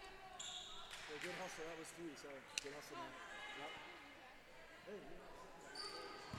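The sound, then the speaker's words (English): A basketball is dribbled left-handed across midcourt on a hard gym floor in a women's Lakers basketball game, in steady, echoing bounces, with a voice talking over the top and a busy arena murmur behind it. “Left-hand dribble as she crosses midcourt.”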